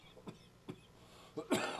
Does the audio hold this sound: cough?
yes